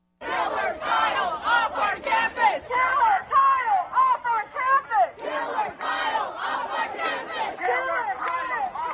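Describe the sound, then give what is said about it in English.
A loud crowd of student protesters at ASU yells the chant "Killer Kyle off our campus" in unison, wanting Kyle Rittenhouse kicked out of the university. Their raised voices rise and fall in a steady, repeated rhythm of short shouted phrases that carries on without a break. “So initially, students that wanted Rittenhouse kicked out of the university were carrying signs like Students for Socialism, and this is what they were yelling.”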